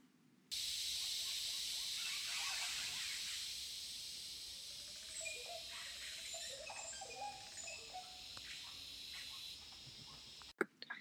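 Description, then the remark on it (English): Liquid, gurgling oropendola calls ring out a few times in the second half, set against a dense, steady hiss of insects in a forest, with a sharp click at the end. “Okay, here's the Aura Pendula bird.”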